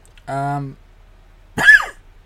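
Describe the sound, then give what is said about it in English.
A single cough from a person who is ill: a brief voiced throaty grunt, a short pause, then one sharp, harsh burst. No one speaks. “just to prove I'm not lying, I'll keep that cough in.”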